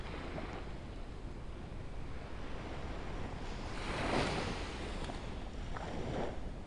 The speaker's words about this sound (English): Like the waves lapping on the shore here. This ebb and flow, these comings and goings that can be tuned into.